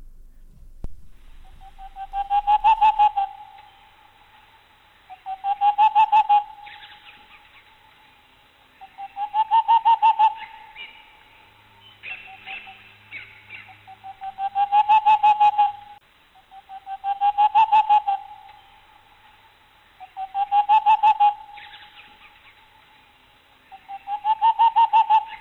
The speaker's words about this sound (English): And hear the glorious sound of the boreal owl.